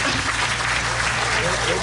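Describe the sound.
Steady crowd applause, a dense wash of many hands clapping at an even loudness for about two seconds, with faint voices mixed in underneath.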